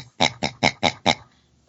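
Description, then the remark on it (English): A person imitates a pig with five quick, evenly spaced snorting oinks, fairly loud, followed by a brief pause with no talking. “Would it help if I did the pig and the nut?”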